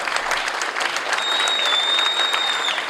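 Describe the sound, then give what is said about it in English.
A smattering of applause from a small group, claps pattering steadily for about three seconds, with a thin high whistle sliding in over the second half. “Oh, so that's what a smattering. That's a smattering.”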